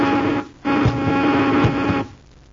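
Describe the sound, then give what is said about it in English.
A ray gun fires a harsh, steady electronic buzz in two loud bursts, each about a second and a half long with a short gap between. The buzz carries a strong low hum and grainy, crackling overtones. “buzz them with the ray gun quickly!”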